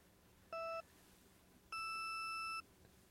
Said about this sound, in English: Then the time trial starts. So I think it's just the beep beeps.